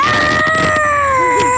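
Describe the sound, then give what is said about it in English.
A voice imitates a constipated duck with one long, strained, nasal squawk. It holds a steady high pitch, sags slightly toward the end, and stays loud throughout. “Dad, I'm going to do a constipated duck.”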